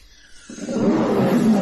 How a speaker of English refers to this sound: It's got a heavy crimson blanket hanging over it, but the blanket sort of dents in a few places, suggesting what's under it is a cage, full of bars. It's heavily chained up in all directions with several padlocks, and the cage is growling.